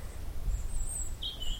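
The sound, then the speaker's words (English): Thin, high-pitched calls of a mixed flock of tits, nuthatches and treecreepers, a few brief notes and one longer sliding call, set against a steady low outdoor rumble. “We're in the middle of a little mixed flock of tits and nuthatches and tree creepers at the moment.”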